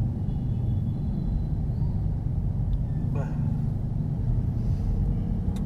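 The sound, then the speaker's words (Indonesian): Steady low engine rumble from slow, congested traffic in West Jakarta, Indonesia, fills the whole recording, a dense continuous drone with faint higher noises from other vehicles drifting through. “Anjing macet banget sih, gila.”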